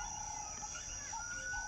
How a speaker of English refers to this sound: I'm sorry, that was a little alarm. Time to end the episode.